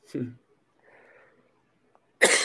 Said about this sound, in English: Give me a second. I'm having a coughing fit over here.